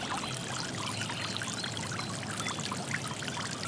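A steady, continuous rush of flowing stream water, a dense, even babble with no pauses, moderately loud, with no voices.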